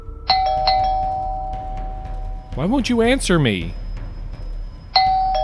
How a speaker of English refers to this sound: The doorbell kept ringing and ringing, but for some reason, her father refused to answer her desperate cries.